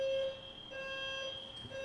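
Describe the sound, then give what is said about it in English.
An apartment building fire alarm sounds steadily during a fire drill, a shrill electronic tone held at a constant pitch with a faint pulsing warble, alone with no voices. “Also, A FIRE DRILL.”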